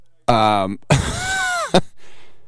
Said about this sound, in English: who's yelling over there? It's coming through my mic.